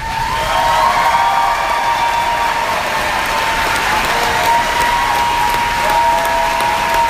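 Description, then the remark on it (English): Loud, sustained applause from a large crowd at a school commencement ceremony for the class of 2017, applauding principal Dr. Brewer: a dense steady clatter of many hands with some cheering and whistles mixed in. “At commencement, he got louder applause than the class of 2017.”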